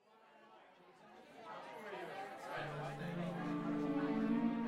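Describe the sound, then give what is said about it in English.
A crowd of party guests in a living room, overlapping voices chattering and laughing at once, steadily growing louder, with a faint musical tone and humming underneath the lively babble, while cards are played. “He listened to the excitement around him, the laughing, the music, and the card playing.”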